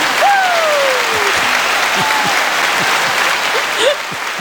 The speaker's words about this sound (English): Ooh, I think we have a button for that. We do have a button. Give yourself a round of applause.